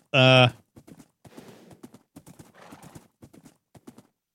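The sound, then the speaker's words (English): A horse gives a loud, brief whinny, then its hooves clip-clop in a quick, steady rhythm on a long bridge, moderately loud for several seconds. “You could jump in with the horse, but you'd drown the horse, which would be kind of not cool.”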